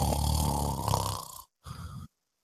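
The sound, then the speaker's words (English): A man imitates his own loud snoring, gasping for air: a long, rattling snore over about a second and a half, a short silence, then a briefer harsh gasping snort, fairly loud. “Like, but it's more like the gasping for air, like, all right, he's about ready to need a CPAP machine sort of thing.”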